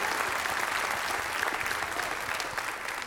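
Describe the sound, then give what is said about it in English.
An audience claps hands for the glory of the Lord in a steady, dense burst of applause, loud and sustained for the whole stretch, with no voices standing out above it. “Somebody clap your hands for the glory of the Lord.”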